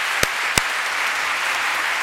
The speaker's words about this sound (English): I wonder if we can give them a round of applause for the work they have done.